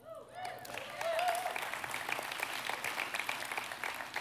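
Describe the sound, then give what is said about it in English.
An audience applauds steadily for the speaker's wife for about four seconds, a dense, even patter of many hands, with a brief voice or cheer rising over the clapping near the start. “That applause is for her.”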